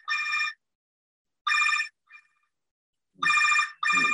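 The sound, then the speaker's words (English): A telephone rings in short, bright electronic bursts, about four rings with uneven gaps, the last two nearly back to back. It's fairly loud, with no voices. “Blowing up his phone.”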